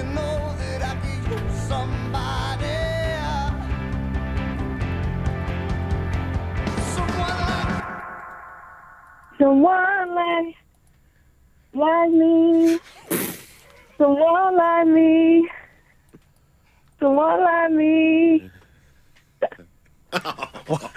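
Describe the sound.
About eight seconds of a loud 2000s rock song, played in an Absolute Radio music quiz, with thick guitars and sung vocals, cuts off abruptly. A contestant then sings in short, wavering bursts separated by pauses.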